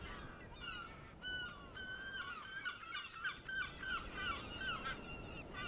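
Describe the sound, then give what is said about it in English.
A flock of seagulls flapping in numbers under a stark blue sky cries out, many harsh overlapping calls rising and falling almost continuously over a steady rushing background noise, with no voices present. “A stark blue sky with seagulls flapping in numbers.”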